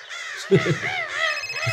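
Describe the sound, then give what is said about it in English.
A crow caws loudly and harshly several times in quick succession, with faint low voices murmuring underneath. “Why is that bird so loud?”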